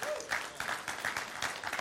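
A crowd applauds steadily, many hands clapping together in a dense, sustained wash of sound at moderate volume, with no talking over it.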